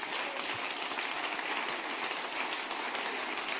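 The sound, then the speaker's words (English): A church audience applauds steadily during a service, many hands clapping together in a dense, continuous wash of sound that holds at an even level from start to finish, with no voices standing out. “Can you clap your hands unto the Lord on time?”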